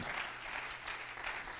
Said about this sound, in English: So give yourself a good round of applause here tonight.